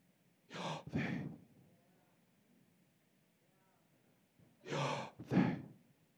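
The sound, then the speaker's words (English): Two slow, deep breaths, each an audible inhale followed by an exhale, separated by a few seconds of near silence. “He heard the sound as of one breathing.”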